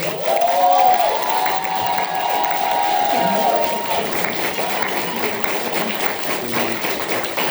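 A crowd applauds steadily for several seconds, the clapping dense and unbroken, while cheers and a long high whistle rise above it early on before the noise settles into continued clapping.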